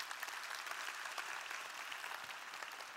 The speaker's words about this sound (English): Let's give God a clap of friendship with that.